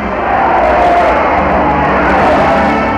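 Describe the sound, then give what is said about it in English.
Newsreel recording of an excited crowd in New York City cheering Fidel Castro's arrival as he crosses the street to his hotel: a dense, steady roar with scattered shouts and whoops rising from the wash of voices, loud and continuous throughout with a slightly muffled, old-recording quality. “And Castro, in a record slow time of 24 minutes, crosses the street to his hotel, almost swamped by the excited crowd.”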